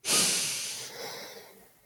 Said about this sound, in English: Right, so close your eyes and we're gonna take a deep breath at 1.